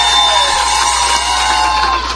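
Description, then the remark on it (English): A crowd cheers loudly and steadily as a wave offering for a woman standing up, with whoops and high shouts blending into a continuous roar of applause-like noise. “Let her stand so that we give her a wave offering.”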